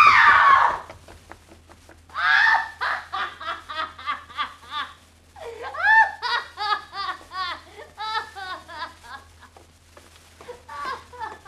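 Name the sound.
woman screaming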